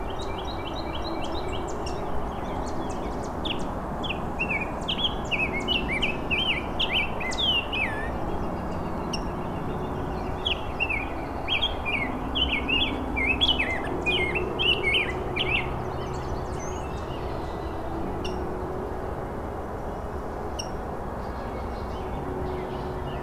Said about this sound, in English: A rose-breasted grosbeak. Nice and clear.